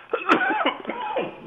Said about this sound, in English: I've got a cough.